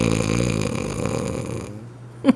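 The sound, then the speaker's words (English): A person imitates loud snoring, mimicking a man who snores through the film A Haunting in Venice: a long rough, rattling inhale that fades out and ends with a short sharp snort. One voice, with no other sounds. “Snoring the whole movie.”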